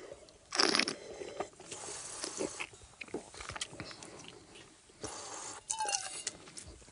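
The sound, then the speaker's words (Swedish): Wine, a blend of 80% Sangiovese with 10% each of Cabernet and Merlot, is spat into a metal spittoon during a tasting in two loud, splashy bursts separated by quieter rustling, with a faint metallic ring after the second spit. Nobody speaks. “Och som vanligt spottar jag in jättestor, det låter som jag spottar en stor aluminiumtoalett varenda gång innan det har kommit ner någonting.”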